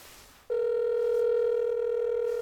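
After a brief hiss, a loud, steady electronic telephone tone switches on as a phone number is dialed and holds unbroken to the end, with no talking over it.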